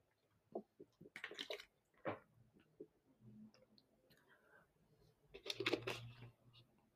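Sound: sipping water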